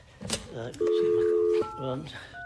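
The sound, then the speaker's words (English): Telephone dialing tones sound clear: a long steady electronic beep, then another tone starting near the end, with a voice murmuring around them, as the telephone number of the Weekly Advertiser is dialed. “Where's that telephone number for the advertiser?”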